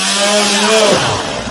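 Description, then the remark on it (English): A loud chainsaw engine roars with a harsh, buzzing drone, holding steady before its pitch sags and wavers partway through, as if the motor bogs down. “He fucking threw the chainsaw and...”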